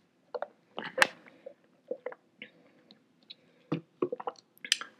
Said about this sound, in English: And I'll let you guys sit on that while I take a sip.